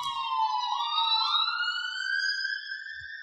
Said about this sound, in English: I'm assuming that all the ambulances going by, that you guys personally arranged this.